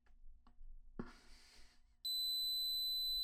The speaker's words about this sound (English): Okay, so now let's get my Air Max warmed up. Let's listen for the beep.